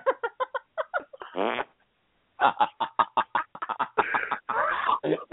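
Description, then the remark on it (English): A loud run of short sputtering fart noises, a quick stuttering string followed by a longer buzzy blast, then more rapid pops ending in drawn-out, rasping toots, with no talking. “I'm sorry, I farted a little and peed a little too.”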